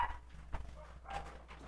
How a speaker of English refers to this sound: I'm gonna go close that because my dog has decided to screech.